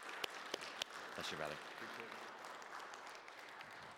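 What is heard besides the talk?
audience applauding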